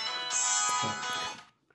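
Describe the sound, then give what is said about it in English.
A phone rings for an incoming call with a bright, buzzy electronic ringtone, one sustained burst lasting about a second and a half before cutting off. It is fairly loud, with no talking. “We have a phone call.”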